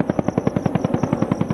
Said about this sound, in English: Super Cobra attack helicopters took to the skies on Wednesday to carry on with the exercise.